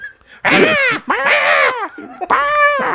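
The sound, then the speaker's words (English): A human voice imitates a hawk's screech with three loud, drawn-out, shrill cries in quick succession, separated by brief pauses. “She starts making a hawk noise.”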